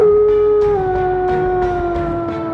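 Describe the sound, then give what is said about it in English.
A single loud, mournful wolf howl, drawn out, holding a steady tone that slowly sinks in pitch over a couple of seconds, with no voices around it. “tilted his head back and let out a grief-stricken howl.”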